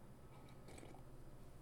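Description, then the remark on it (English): A brief sip of a mushroom latte, with soft wet slurping and mouth noises lasting a second or so, fairly quiet and with no talking. “Let me take a sip of my mushroom latte stuff.”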